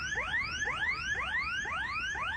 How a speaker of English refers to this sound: It's not just once either. The siren's going off because someone's stealing from inside this bin.